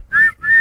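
Two short, steady whistle blasts, fairly loud, with a brief gap between them. Each holds a clear high pitch. No voices or other sounds accompany them.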